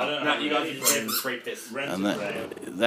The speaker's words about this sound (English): The chaos, the dogs are running around with squeakers